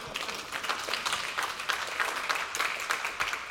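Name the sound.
applause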